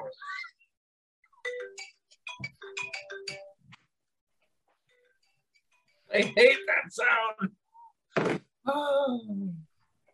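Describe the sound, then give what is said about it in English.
A short electronic phone chime from a phone left on during a recording plays as a quick run of bright tones, followed after a pause by people's voices reacting loudly. “I hate people who don't turn their phone off while you're recording.”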